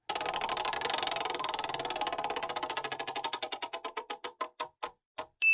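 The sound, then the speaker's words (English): A prize wheel holding Patreon members' names, shuffled and then spun, turns with a rapid rattle of clicks that gradually slow into distinct, spaced-out ticks before coming to rest, ending with a brief final sound. “I'm going to go ahead and give a little shuffle, then I'm going to spin.”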